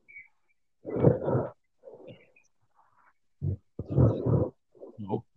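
Snoring: a series of rough, raspy snorts and rasping breaths, some short and some drawn out, in an irregular rhythm with brief quiet gaps between them and no talking.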